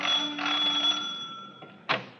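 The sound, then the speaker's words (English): A doorbell at the door marked manager, at the head of the stairs of a seedy-looking hotel upstairs over a Chinese laundry, rings with a steady metallic tone for about a second, then fades into a lingering hum before a short, sharp burst of noise near the end. “At the head of the stairs was a door marked manager. I rang the bell.”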